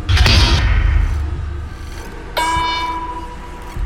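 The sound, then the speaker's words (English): Heavy mechanical doors slam down twice in a chamber, trapping those inside: a loud, booming first crash with a rumbling low end, then a second slam that leaves a sustained, ringing metallic tone. No one speaks. “We followed it into another chamber, and once the creature moved beyond it, mechanical doors slammed down, trapping Carface and me inside.”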